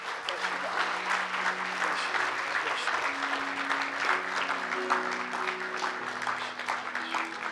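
An audience claps hands in a dense, steady burst of applause lasting several seconds, with soft sustained low keyboard notes holding underneath the clapping.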